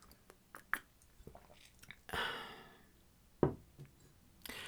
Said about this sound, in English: I'm gonna have a quick sip of tea, and then I will magically have finished putting this together.